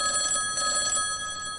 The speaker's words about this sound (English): in the other box, there's this thing inside, like a rectangle of metal with a handle and a metal cord or a rope, it looks like, and it's just ringing. There's this bell that's ringing insistently, and for some reason, it seems to draw you towards it.